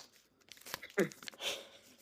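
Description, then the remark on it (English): Paper being unfolded: a quick series of crisp rustles and crinkles over about two seconds, with one sharper crackle midway and a broader swish near the end, fairly quiet overall. “Up next, we have nothing yet because I haven't unfolded the paper.”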